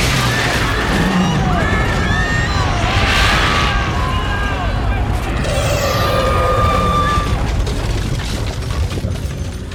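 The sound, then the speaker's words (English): A loud explosion roars through a courtroom, engulfing the defendant as it spreads to the back of the room, a dense, sustained rumble and crackle that fills the whole stretch, with frantic shouting voices mixed into the chaos. “This explosion in the courtroom engulfs the defendant as it makes its way to the back of the room, where Pierce is trying to keep the members of the public safe by getting them to leave as quickly as possible.”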